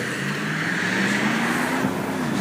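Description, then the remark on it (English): Steady, continuous rumble of passing road traffic with a low engine drone rising slightly in pitch, filling the background at moderate loudness with no voices. “Yes, now I'm noticing that there's a lot of. Traffic, so I'm not sure if I'll be entirely heard.”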